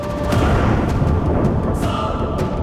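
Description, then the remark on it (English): A low, rolling rumble of distant thunder from dark storm clouds, holding steady for a few seconds, with a few faint crackles above the deep drone and no voices. “In the distance, he could hear the faint rumble of thunder.”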